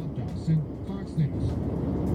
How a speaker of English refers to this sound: Now you can clearly hear the car has like drifted to the side, and that's why it's making the noise. It's hitting the little strip on the side of the road.